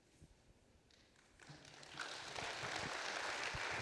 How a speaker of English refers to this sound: Oh, see, you all are applauding responses about publishing. This is awesome.